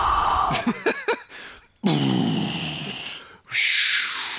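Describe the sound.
A person imitates the sneeze of a character in the film Popstar: Never Stop Never Stopping: a few quick voiced gasps build up, then a loud, harsh burst of breathy noise, followed by a second forceful blast.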